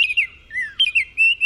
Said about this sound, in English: And the short and sweet oriole.